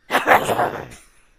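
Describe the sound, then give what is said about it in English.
One loud, explosive sneeze, a burst lasting about a second that tails off quickly into quiet, with no talking around it. “Was that a Russian sneeze?”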